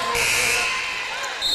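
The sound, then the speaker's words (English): A stray basketball thumps against a hard court near the announcer during a women's basketball game between Coldwater and Three Rivers, amid a busy wash of gym noise, with a thin high squeak running through the first half and muffled voices underneath. “and again, a stray basketball almost winds up in my lap.”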